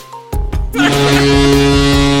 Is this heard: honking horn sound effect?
yes